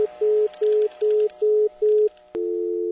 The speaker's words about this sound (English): Far off away, I thought I heard an anguished cry, then the familiar dial tone. I fumbled the phone back into the cradle and sat there for a moment thinking.